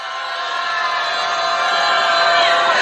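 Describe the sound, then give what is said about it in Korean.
A large crowd at the 26th candlelight march rally lets out a sustained, loud roar of shouting in anger, a dense wall of voices that holds steady and swells slightly toward the end, with no individual speech standing out. “네, 분노의 마음 담아서 함성 한번 질러보겠습니다.”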